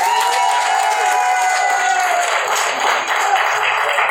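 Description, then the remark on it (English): A comedy show audience applauds steadily after being asked to clap if they love black people, a loud, dense wash of many hands clapping at once, with some cheering and whoops mixed in throughout. “If you love black people, clap your hands.”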